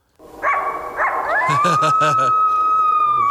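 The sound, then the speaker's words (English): A person imitates a coyote, giving a couple of short yips followed by a long, rising, wavering howl held for several seconds, loud, with other voices briefly chattering underneath. “And back on the podcast, the one coyote man.”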